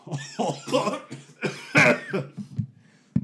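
A person coughs repeatedly, a fit of harsh, raspy bursts in quick succession, trailing off with some throat-clearing and one last sharp cough.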